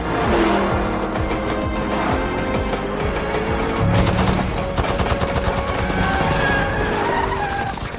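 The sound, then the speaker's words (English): Rapid bursts of gunfire rattle over a roaring car engine and skidding tires, with bullets striking a suit in quick succession, loud, growing denser in the second half. “You've been taking bullets, charging it up with kinetic energy.”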